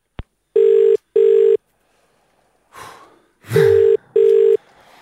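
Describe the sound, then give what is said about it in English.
An outgoing phone call: a brief click, then two loud double-burst ringing tones with a soft rustle or breath between them, heard clear with no talking. “Jack's got the number, and we're popping it at him now.”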